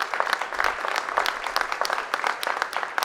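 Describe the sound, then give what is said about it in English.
A crowd gives a round of applause for having together completed a huge project, with many overlapping sharp claps forming a dense, even patter at moderate loudness throughout, with no talking. “And so I just want to give us all another round of applause for getting this done.”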